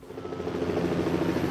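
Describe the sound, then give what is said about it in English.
A voice imitates a helicopter with a steady, throbbing rotor-like whir, sustained and fairly loud with a slight build, with no other talk. “Oh, I hear a helicopter. That is amazing.”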